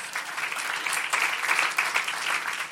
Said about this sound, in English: Now, can I get an applause on that one?